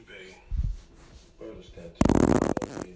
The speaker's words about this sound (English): Oh, it's supposed to be like a spattery fart. That's what spart is.